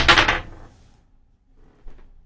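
A pair of dice clatter in a bright, rattling burst that quickly fades, followed by a softer, brief second rattle as they settle. No voices.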